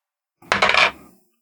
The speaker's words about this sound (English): Go ahead and roll some dice. Roll me D20. I'll give it Arcana check.